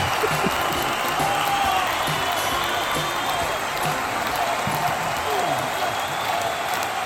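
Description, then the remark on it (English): A stadium crowd applause sound effect played on a sports trivia show: a dense, continuous wash of clapping, with scattered cheers and murmurs mixed in, holding an even loud level throughout. “It's the stadium applause.”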